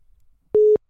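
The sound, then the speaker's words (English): A single loud, steady phone busy tone sounds after a hang-up, a flat mid-pitched beep lasting about a quarter second with sharp starts and stops. “Oh, he hung up.”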